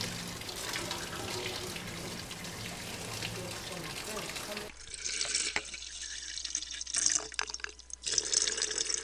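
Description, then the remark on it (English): Water runs in a steady, dense rush in a traditional hammam, a steam room similar to a Turkish bath, at a riad hotel in the Medina in Morocco, then gives way to sparser sounds: scattered drips, small splashes and trickles, some sharp and bright, at a moderate level. “A hammam is a steam room similar to a Turkish bath, and it's an important part of Moroccan culture and life.”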